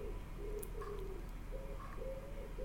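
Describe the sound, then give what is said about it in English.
A pigeon coos softly in a low, repeated rhythm, a few faint hooting notes over a steady background hiss. “My goodness, I don't know if this microphone is powerful enough to have picked that up, but he literally just did his little coo.”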